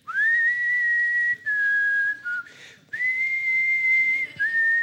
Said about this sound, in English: And as I'm going up the hill, I'm singing the song in my heart. And I've got a smile on my face. And by 80 Ks, a lot of people are starting to feel in pain, if you know what I'm talking about. And we're going up the hill and I just start whistling.